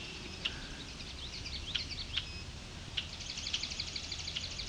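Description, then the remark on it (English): A red-winged blackbird sings beside a grassy trail with very tall grass, a few sharp calls followed by a buzzy, rattling trill, over a soft outdoor hum with no voices. “There's a red-winged blackbird song.”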